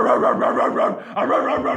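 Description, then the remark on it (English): A person imitates a dog barking at people, loud, in a rapid run of rough, continuous woofs with a short break midway, and no other talking. “But yeah, yelling at people, barking at people is where it's at.”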